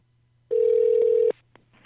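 A telephone dialing tone as a call is placed: one steady, mid-pitched electronic beep lasting just under a second, loud over a faint low hum, followed by a couple of soft clicks on the line.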